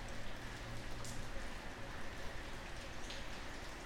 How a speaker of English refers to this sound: So as I'm sitting here looking at the rain, it's actually a little bit chilly because of the rain.